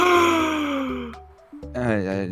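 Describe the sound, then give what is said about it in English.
A loud, voiced gasp from a person, drawn out with a falling pitch, then a brief pause before a second rising vocal exclamation. Prominent, with no words spoken. “you gasp out loud?”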